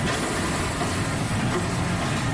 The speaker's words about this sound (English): It has certainly happened to many of us. You forget to put the garbage cans at the curb, and you don't do it until you hear the roar of that trash truck.